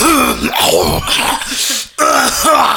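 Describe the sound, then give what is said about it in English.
A person loudly imitates a series of harsh, violent coughs and throat-clearing hacks, forceful, with a brief pause before one final raspy burst. “everybody is just blatantly, without any care in the world, giving us the most violent coughs ever.”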